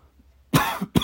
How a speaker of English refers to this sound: And I'm coughing. So I guess my throat's dry.